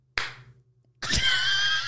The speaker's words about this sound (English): Anyway, yeah, I'll do the clap.